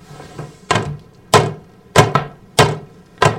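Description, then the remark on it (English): Six sharp, hollow knocks rap on a door in an uneven rhythm, two landing close together midway, each a loud thud with no voices alongside. “I think someone knocked, Judson.”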